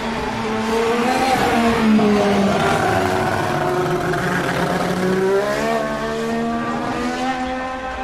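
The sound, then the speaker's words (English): A McLaren MP4-4 Formula One car with a Honda engine screams past in a display of McLarens, its high-revving engine loud, pitch climbing and dropping through quick gear changes for about eight seconds with no voices. “That was an MP4-4, I think. Senna's, yeah, Honda.”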